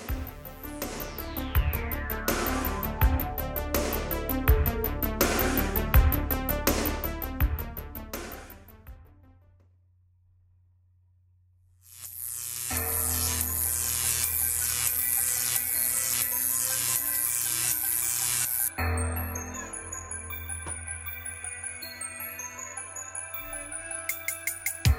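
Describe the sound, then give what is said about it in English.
A loud, busy musical jingle plays with no talking, fading out briefly before a second, brighter burst of rhythmic, pulsing music picks up and carries on steadily. It is the intro jingle for The Buzz, a horror news segment of the show. “That music, of course, means that it is time for The Buzz.”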